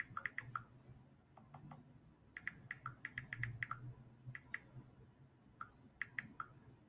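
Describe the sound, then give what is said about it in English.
Rapid clicking of keys on a computer keyboard, irregular bursts of keystrokes over a low background hum, with no one speaking. “Woo, I'm over typing.”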